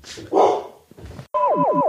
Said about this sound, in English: It's still making a lot of noise. It's still a noisy dog.